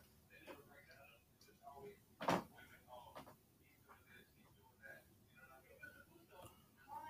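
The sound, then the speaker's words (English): A door opens and shuts with one sharp thud a couple of seconds in as someone comes to the door, followed by lighter clicks and knocks, while muffled, indistinct voices murmur in the background. “I had someone was at the door.”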